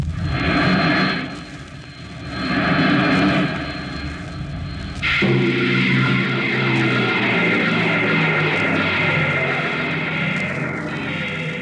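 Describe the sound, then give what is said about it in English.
A loud, roaring rush of a rocket ship's bow jets firing with broad hissing noise as it lands on the desert sands of Mars, shifting abruptly midway into a deeper, steadier mechanical rumble as the ship slides to a halt, continuous throughout, with no voices. “The last blast of the bow jets broke red against the blue desert sands, and the ship slid to a halt at the edge of a vast city that reflected the icy glare of the moonlight.”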